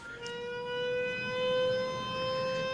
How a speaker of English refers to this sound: I'm just going to have people sit and listen to your fire alarm